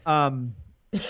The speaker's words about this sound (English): Oh, and the emphysema cough is here.